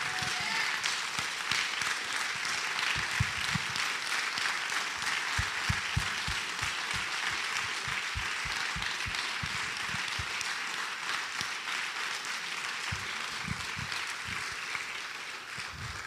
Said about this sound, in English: And Matthew's Table, like, I just want us to take a second to give thanks to Buena Vista Baptist Church for all they've done for us. Like, if we can, just give them just a major hand clap.